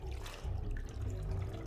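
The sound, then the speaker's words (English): Water sloshes and splashes as it is scooped up from a bucket, a continuous low, wet swirling with soft dribbles, no voices. “I need water. Feel those buckets? There's plenty in there.”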